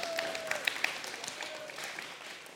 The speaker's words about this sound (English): You can totally clap for that.